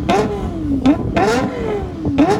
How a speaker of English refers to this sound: But the limiter is 9,600. Jesus. And so you have that, you know, that perfect even firing interval with equal length headers and then 9,600 or 95 or 9,000 or whatever it is.